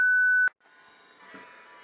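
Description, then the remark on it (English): A single loud, steady electronic beep lasting about half a second, a voicemail prompt tone before a message is left, cuts off sharply and gives way to quiet background hiss. “Beep.”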